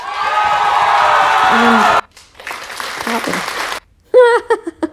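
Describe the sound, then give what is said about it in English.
A loud burst of crowd cheering played as a sound effect, with whoops and applause, lasts about two seconds, trails off into quieter crowd murmur, and then a single voice speaks. “Hold on, there is a thing in here I can have for cheer effect. Cheer.”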